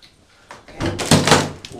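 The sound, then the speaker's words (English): A stuck door that seems painted shut is forced, giving a few heavy thumps and a loud scraping, grinding rattle over about a second, with no one talking. “It's like painted shut.”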